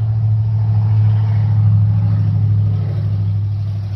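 A loud, rough engine of a poorly maintained 1990s sports car rumbles steadily with a deep, droning low hum and gritty noise, easing off slightly toward the end as it goes by. No one speaks.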